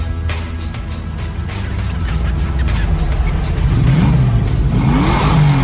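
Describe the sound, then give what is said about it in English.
The engines of two arriving cars rumble steadily and grow louder as they approach, then rev hard with rising, whining pitch sweeps toward the end, loud. “But we need two more cars.”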